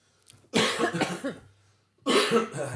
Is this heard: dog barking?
no